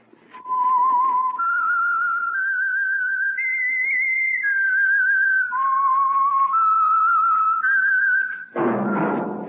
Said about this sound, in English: That whistle is your signal for the Signal Oil Program, The Whistler.